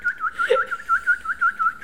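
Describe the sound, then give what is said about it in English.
Someone whistles a rapid, chirping birdlike trill at a dog named Chloe, about ten quick high-pitched warbles in steady rhythm, imitating bird calls, with a brief lower squeak partway through. “Why are you making bird noises like she's a cat?”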